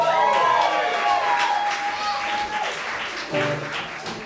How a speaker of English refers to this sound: Please give a huge round of applause